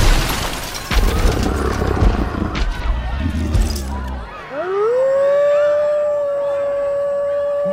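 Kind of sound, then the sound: animal, wolf howling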